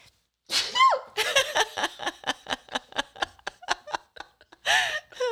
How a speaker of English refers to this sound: I'm gonna sneeze. Listen, it's cute.